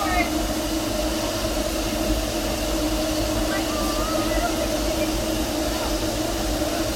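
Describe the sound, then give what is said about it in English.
Steady, loud rumbling and clatter from riding in a rocking car of a moving steam train, a continuous mechanical roar with a low droning hum and faint squeaks riding over it throughout. “It's really interesting right here feeling the rocking motion as opposed to anywhere else on the train.”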